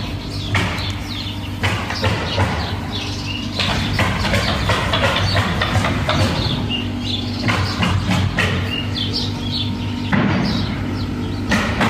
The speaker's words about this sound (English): So, there's obviously some construction going on. We were like, dang, that's early to be, you know, knocking down a house. On a Saturday, for sure.